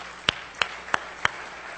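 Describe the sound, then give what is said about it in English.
A group claps hands in unison for their ministers, four sharp, evenly spaced claps in a steady rhythm over a constant hissing background, with no one speaking. “So these are our ministers. Let's give them a good hand clap first.”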